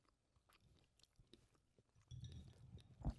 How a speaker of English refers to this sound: Ew, not me chewing in the mic.